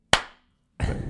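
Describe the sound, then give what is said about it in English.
A group claps once in unison, a single sharp, loud smack that rings out and fades, followed after a brief silence by a rough burst of scattered, noisy clapping. “Well, the one you did really took me a while to get everyone's clap in sync.”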